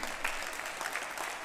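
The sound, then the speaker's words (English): An audience applauding God during a worship service, a dense, steady wash of many hands clapping at an even level throughout, with no voices standing out. “It's okay to applaud God.”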